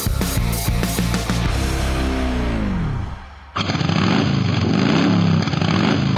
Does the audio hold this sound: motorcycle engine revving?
yes